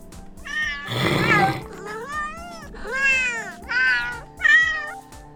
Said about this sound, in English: It's going to change what I'm saying to meows that apparently your cat will understand. So if I want to say, let's say I'm going to record this. Please go get me a beer from the fridge.